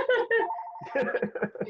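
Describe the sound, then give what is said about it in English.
A phone rings with a short electronic tone, a steady pulsing beep that sounds briefly under people talking, moderately loud. “Oh, there goes my phone.”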